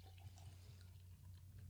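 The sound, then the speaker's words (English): A reddish beer is poured quickly and aggressively into a glass, a fairly quiet, continuous splashing and gurgling with small bubbly pops over a low steady hum, with no voices. “It's a very aggressive pour.”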